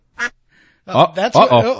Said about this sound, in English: Watch out! There are geese in here.